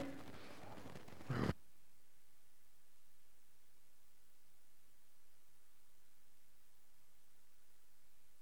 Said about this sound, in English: Wait, is there static? Yeah. Still now? Yeah. Really?